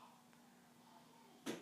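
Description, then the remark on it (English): A single solid thump near the end as a door swings shut, brief, following a stretch of quiet hum. “Can you shut the door?”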